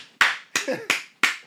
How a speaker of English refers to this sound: Alright, everyone. Clap Thursday. We're gonna clap for them.